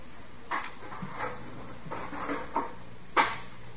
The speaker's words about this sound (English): What happened to the elevator? Then I heard the door open.